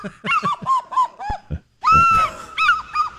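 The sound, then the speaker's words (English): A bald eagle squawks loudly, a rapid string of short harsh calls followed by one drawn-out screech and a few more quick cries. “You took a bald eagle to the polling place.”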